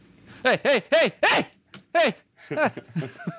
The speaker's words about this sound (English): He said dog is audible, but it's not super distracting.